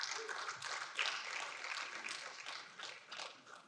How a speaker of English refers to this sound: You guys just feel bad because you clapped about the easy button, and now you're clapping about Jesus.